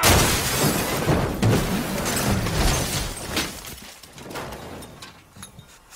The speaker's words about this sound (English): awakens after the ambulance crashes